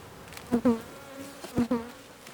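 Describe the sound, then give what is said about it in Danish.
Honeybees buzz around their hives in a forest clearing after rain, with long wet grass; a low steady drone broken by four louder, rising swells as individual bees zip past, with no voices. “Lidt efter står vi foran bistederne i en lysning i skoven.”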